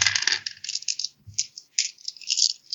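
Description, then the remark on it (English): A handful of eight dice, rolled for a Guts Plus Courage check in a game, rattles and clatters across a hard surface in bursts of bright clicking, with a few dull knocks, moderately loud, no talking. “Guts Plus Courage, 9 dice, I believe.”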